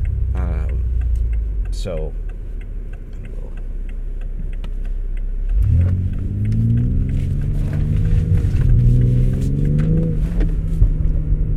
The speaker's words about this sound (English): Normal cars don't do that, right? Normal cars don't lean into the pivot and slide right out like that. That's just part of BMW's DNA.